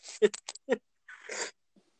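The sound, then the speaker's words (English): A dog whimpers in a few quick, choppy whines, followed by a longer breathy whimper and a faint final squeak. “My dog.”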